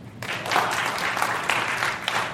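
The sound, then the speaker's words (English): An audience gives a sustained round of applause when asked how many are from Atlanta. Dense overlapping hand claps at moderate loudness, with a few louder individual claps standing out over the steady patter. “How many people, by round of applause, are from Atlanta?”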